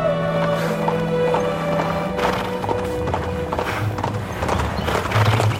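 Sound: horse galloping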